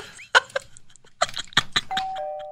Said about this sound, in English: Wind chimes need to be illegal. Oh God. The whole neighborhood is kept awake and annoyed all the time because of one occupant wants to just share their love for the sound of clanging metal pipes.